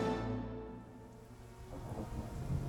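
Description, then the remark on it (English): A thunderstorm: deep thunder rumbles and rolls steadily beneath a constant hiss of falling rain, with the rumble swelling again toward the end. “The storm approached.”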